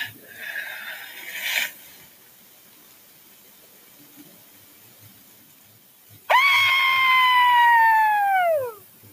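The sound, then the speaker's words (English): After a quiet stretch, a person lets out one loud, long, howling yell imitating a Bigfoot call. It holds steady for a few seconds, then its pitch drops away at the end. “Hey, you guys want to try a yell?”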